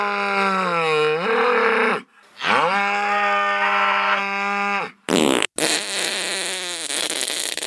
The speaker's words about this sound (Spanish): Sí, escucharon bien, las flatulencias bovinas.